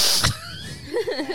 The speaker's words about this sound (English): Are you sniffing the mic? I love that.